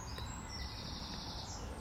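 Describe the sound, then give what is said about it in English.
Steady, high birdsong fills the background in a continuous bright chatter over a low outdoor rumble with no voices. “All around me, an incessant conversation echoes and resounds as birdsong keeps up a constant soundscape that's brimming with information, the meaning of which is denied to human ears, which can only speculate on the generality of its specifics.”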